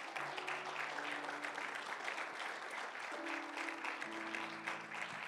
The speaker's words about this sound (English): Come on, would you give the Lord a hand clap of praise this morning?